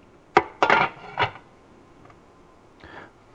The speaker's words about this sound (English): Let me get my tongs. My silicone tongs. I've got me a bowl here. One of our perfect bowls. Perfect.